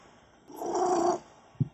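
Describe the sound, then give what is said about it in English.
A cat purrs close to the microphone in a short, steady burst of under a second, followed moments later by a single soft thump. No one speaks. “Oh, that's the damn cat.”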